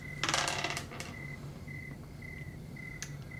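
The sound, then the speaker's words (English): Dice are rolled across a hard tabletop, landing on a six: a quick clatter, a burst of rapid clicks lasting under a second, then a final tap and quiet with a faint background hum and chirping. “Okay, so you roll a six.”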